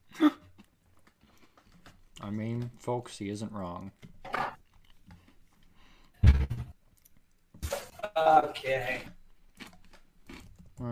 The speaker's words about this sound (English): What are you eating? What are you munching on? I just ate a fortune cookie.